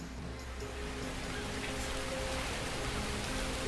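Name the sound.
rain falling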